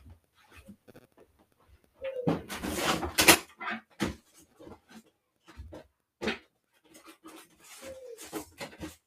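rummaging through a drawer

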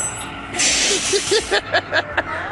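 bus air brakes hissing

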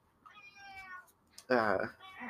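cat meowing

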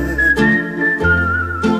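whistling

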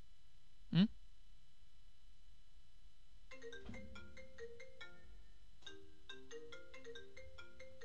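phone ringing

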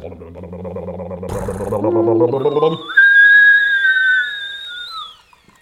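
kettle boiling

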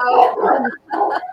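dogs barking

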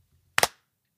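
single hand clap

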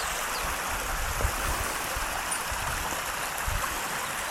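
flowing stream water

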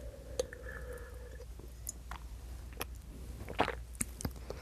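sipping a drink

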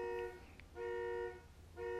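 car horn honking

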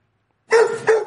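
dog barking

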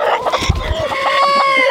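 chickens clucking

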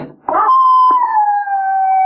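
dog howling

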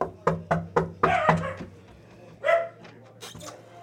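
small dog barking

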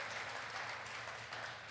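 audience round of applause

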